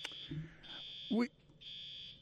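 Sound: fire alarm going off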